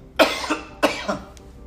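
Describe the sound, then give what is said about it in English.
Two sharp coughs about half a second apart, each with a short rough tail, from something stuck in the throat. Nobody speaks. “This is just something stuck in my throat. This is not COVID related.”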